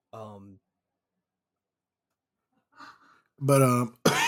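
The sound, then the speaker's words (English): A short voiced sound, then quiet, then two loud, harsh coughs from a lingering cough in quick succession, the first longer and rougher than the second. “The stupid cough still won't go away.”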